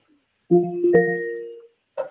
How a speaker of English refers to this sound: You hear the timers, right? What's that saying? I don't think she'll do it again, but she's telling me that I need to swap out my pantalones.